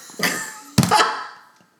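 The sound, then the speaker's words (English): A phone drops with a dull thunk, then hits again with a sharper knock and a brief clattering rattle that fades out. No one speaks. “Just dropped her phone.”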